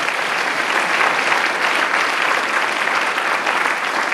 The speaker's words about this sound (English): So yeah, give them a round of applause.